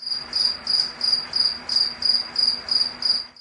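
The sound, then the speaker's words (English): A cricket chirps steadily, shrill pulsed trills repeating about three times a second with a faint low hum underneath and no voices. “Do you think crickets smell? Yes, they do. Chirp, chirp, chirp.”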